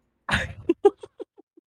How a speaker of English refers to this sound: I literally have to go like cough my ass off. So give me just a second.